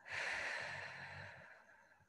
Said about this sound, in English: And as we release, breathing out through the mouth